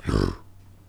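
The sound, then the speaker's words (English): A man gives a short, guttural imitation growl, a rough low vocal burst lasting about a third of a second before fading into a faint background hum. “You gotta stop with that fucking growl.”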